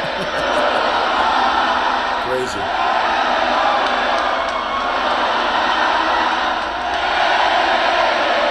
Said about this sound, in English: Actually, the crowd saying, no, na na na na, na na na na, hey, hey, hey, goodbye.